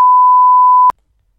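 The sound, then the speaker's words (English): A single loud, steady pure-tone bleep lasting just under a second, cutting off abruptly into near silence, the classic censor beep used to mask a word. “Can we use the beep for the rest of the podcast as well?”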